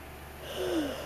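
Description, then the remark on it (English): A short, quiet yawn: a breathy intake followed by a low, voiced tone that slides gently downward and fades, with no talking. “Sorry, man. Yawning again.”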